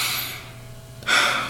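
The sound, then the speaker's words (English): An airy breath fades out, then after a short pause a second strong, hissing breath begins and holds, like a deep inhale and exhale during a mindfulness breathing exercise, with nobody speaking. “I watch my breath go in and go back out.”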